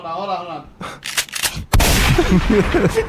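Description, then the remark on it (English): A brief voice gives way to a sound effect: a few sharp crackling bursts, then a loud explosion-like boom that rumbles and roars on to the end, heavy. “You can't do that one. It sounds too much like an explosion.”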